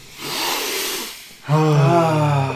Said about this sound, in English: So, I'm going to start with the nose. I'm going to do a sniff. So, I'm getting... Should we do one more? One more.